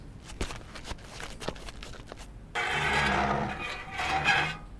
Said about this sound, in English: So what are you waiting for? Move the fridge out of the way! You got it, boss.